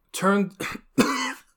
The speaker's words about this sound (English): Instead, their body started to cough, hacking up globs of spit that sizzled in the rising heat of the room.